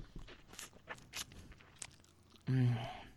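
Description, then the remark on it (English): Someone bites and chews a lemon close up, with quick, irregular wet crunches and smacks, then a brief loud voiced groan at the end. “when they come out and they call me, I bite directly into a lemon to let them know what they're getting into.”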